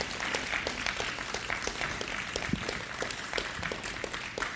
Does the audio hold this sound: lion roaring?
no